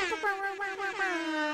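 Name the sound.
air horn sound effect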